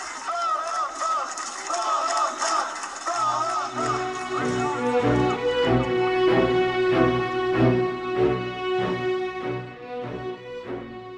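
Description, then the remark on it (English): A large crowd of protesting Romanians shouts applause for the journalists who uncovered a story, then settles into loud, sustained chanting in unison of the last name of journalist Catalin Tolentan, the massed voices holding steady pitched tones that swell and repeat rhythmically for several seconds. “The protesting Romanians are shouting applause for the journalists who uncovered this story, along with the last name of a famous journalist, Catalin Tolentan.”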